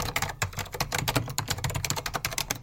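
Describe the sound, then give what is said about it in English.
Rapid, steady typing on an Apple Extended II keyboard, a dense run of crisp, clacky keystrokes with no voices over it. “An Apple Extended 2 keyboard.”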